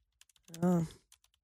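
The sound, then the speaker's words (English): Quiet computer keyboard typing: a few scattered key clicks, a short vocal sound in the middle, then several more light, irregular keystrokes. “Relaxed people take fewer but longer pauses when typing on a keyboard.”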